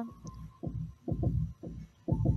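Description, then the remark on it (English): A deep, muffled video game heartbeat sound effect thumps in a steady rhythm, each beat a doubled lub-dub pulse, with a faint hum underneath and no voices, guiding a dead player toward a luminous door to revive. “Follow the heartbeats. It seems like it's coming from this way.”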